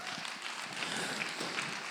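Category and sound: crowd, audience clapping hands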